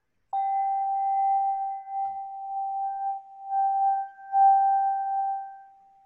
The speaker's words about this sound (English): You need clarity. You need clear water, good water. You need quartz crystals, and you need clear sounds. Let me play this bowl again for you, shall I? Yes, please.